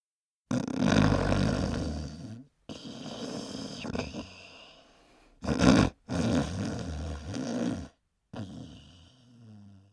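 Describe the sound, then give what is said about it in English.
Loud, rumbling snoring of a sleeping man, in long rattling breaths broken by short silences, with one brief harsher snort in the middle and a softer final snore. “My husband snores.”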